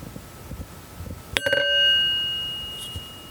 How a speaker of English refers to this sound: That was a sad sounding chime. We're going to do that one again.